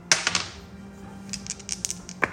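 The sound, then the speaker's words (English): Two six-sided damage dice (2d6) clatter across a hard surface in a quick burst of sharp clicks, then tumble again in a lighter scatter of taps before one last click, fairly quiet over a low hum. “Roll your damage dice for each one. It's 2d6.”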